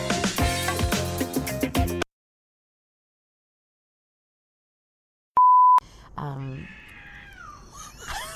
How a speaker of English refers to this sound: Is that a cat? Was that a cat? It's a cat? Yes. Yes. Those cats sound like children sometimes.